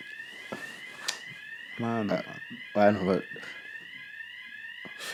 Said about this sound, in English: Choose fire alarms going off. We're on the full floor as well, guys.